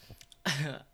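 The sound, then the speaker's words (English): A single cough bursts out sharply after a moment of near-quiet, then trails off with a short rough, voiced tail. No talking. “By the way, kudos to you for fighting through that cough all night.”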